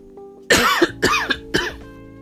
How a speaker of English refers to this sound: I am so sorry, I'm coughing a lot.